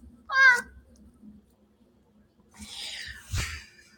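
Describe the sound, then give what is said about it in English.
A male rescue cat lets out one short, high-pitched meow, then after a quiet pause a rougher, breathy rasp follows. No one speaks. “He goes, meh, meh, meh, meh. This cat barks.”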